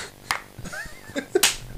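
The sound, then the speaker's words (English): A couple of sharp, loud slaps of a hand smacking a leg by a microphone, each a crisp percussive crack, with fainter softer taps and a brief tonal murmur in between. “I mean, I didn't smack it. I just smacked my leg.”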